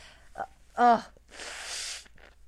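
blowing nose

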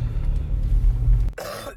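cough

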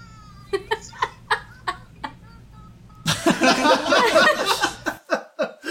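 cat yowling

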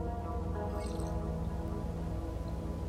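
sipping coffee

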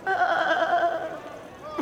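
goat bleating

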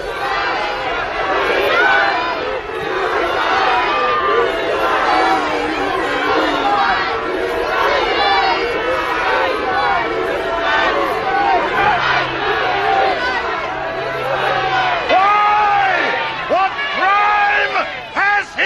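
crowd shouting

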